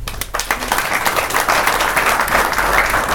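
A crowd applauds steadily, many hands clapping in a dense, continuous wash of sound that stays loud and even throughout, with no voices standing out.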